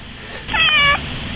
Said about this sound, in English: Did you hear that? I heard that. I heard it. I think you're squeezing your cat or something.